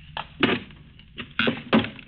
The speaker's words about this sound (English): What are you going to do? Pry up those boards? Yes, they'll loosen up.